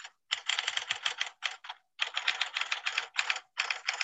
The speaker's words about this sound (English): there's no way you should be typing this much for one Flock of Sequels episode